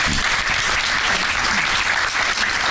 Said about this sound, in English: That is one long walk. They have to keep the applause going a long time while you guys are walking down there. We like that.